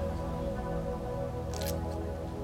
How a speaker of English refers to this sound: You know, hang on, I'm going to get a sip of my Maxwell House coffee.